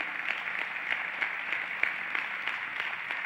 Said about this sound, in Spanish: Vamos a darle un aplauso a este oficial que está aquí parado en la puerta.